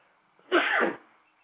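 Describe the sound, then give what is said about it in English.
A single loud sneeze, an abrupt burst of noisy breath lasting about half a second against a quiet background. “God bless you. Thank you, brother.”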